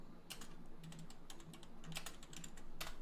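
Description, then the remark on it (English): Quick, irregular clicks of fingers typing on a computer keyboard, fairly quiet, with bursts of keystrokes over a low steady background hum and no talking. “Where'd all that typing go? I just typed a bunch.”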